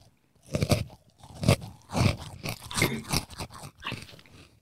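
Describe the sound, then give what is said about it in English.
Chicken-flavored Crimpies chips being crunched and chewed, a string of about six or seven crisp, crackly bites in an uneven rhythm, fairly loud with no talking over them. “I got a chicken crimpies.”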